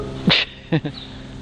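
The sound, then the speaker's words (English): A neighbor's dog outside in nice weather barks three times, a single sharp bark followed by a quick pair, over a low steady background hum. “Like, that's like what you just heard, that's the most that dude barks.”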